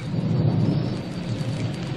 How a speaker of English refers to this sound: This is the forest where the rain never stops. Rain drips from the leaves and falls with a plop.